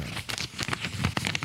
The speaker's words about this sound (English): Yes, I'm turning the page. That's a sound. It sounds like someone's making mac and cheese in their bedroom.